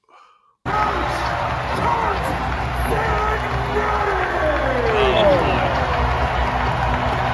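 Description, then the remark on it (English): A basketball arena crowd at an Indiana basketball game roars loudly and steadily as someone fires it up after a brief quiet moment, a dense wall of cheering and yelling that swells and stays intense to the end. “I got to play this clip from an Indiana basketball game of … firing up the crowd”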